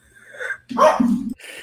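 A dog named Roland lets out a short, throaty bark, fairly loud, bracketed by softer whiny yips just before and after. No one speaks.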